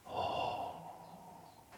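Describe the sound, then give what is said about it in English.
A single long, deep exhale through the nose as part of a breathing practice, strong at first and then trailing off softly, clear with no talking. “Carbon dioxide, breathing out the carbon dioxide mind.”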